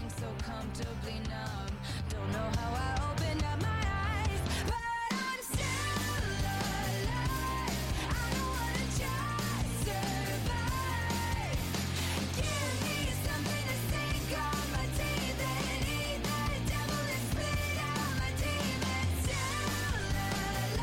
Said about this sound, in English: and it plays over the credits, the closing credits of the movie. It's a very catchy song. It doesn't really scream. But I like the song.